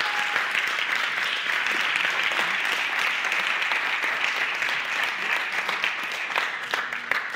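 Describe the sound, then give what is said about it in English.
Sustained audience applause for a family of musicians fills the whole stretch, a dense, steady wash of many hands clapping at a fairly loud, even level without any talking over it. “But anyway, give a warm clap to the ….”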